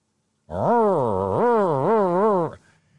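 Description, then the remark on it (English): A voice imitates a car engine being revved in the background of a radio studio: a loud, buzzing tone that climbs and falls in pitch in three or four surging waves over about two seconds, then cuts off abruptly. “Are you, buddy, do you hear the car being revved in the background there?”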